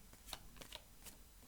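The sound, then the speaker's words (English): Quiet papery snaps and slaps of cards from an Alistair Crowley Toth tarot deck being shuffled and dropped, about five crisp bursts at an uneven pace, with no voices. “All right, Alistair Crowley Toth deck, dropping cards.”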